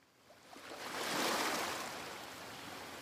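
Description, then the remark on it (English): An Atlantic wave surges in and breaks on a five-mile sandy island beach, swelling to a loud broad roar about a second in, then lingering as a steady hissing wash of surf with no voices. “It's an island, so you have to take a little boat, and it's 5 miles of sand and Atlantic breakers crashing.”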